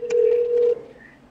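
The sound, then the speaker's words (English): A telephone being dialed to call HR: one steady electronic phone tone, clear, holds for under a second before cutting off, leaving a faint hum behind. “I'm going to call HR real quick.”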